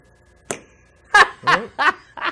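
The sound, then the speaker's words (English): A single crisp finger-snap sound effect, played by the game system when a Joy-Con controller is slid on, cracks out with a faint tone lingering after it, followed by several bursts of laughter. “The system does play a sound effect when you slide on the Joy-Cons.”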